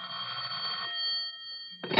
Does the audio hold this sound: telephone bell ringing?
yes